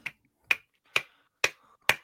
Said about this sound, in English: Why are you slapping? That was fucking disturbing.